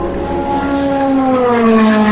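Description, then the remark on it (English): A Porsche LMP1 race car roars past at speed at the Porsche Curves at Le Mans at night, its loud, high-pitched engine whine sliding steadily lower in pitch as it goes by, with no voices. “That was one of the LMP1 cars. That was the Porsche.”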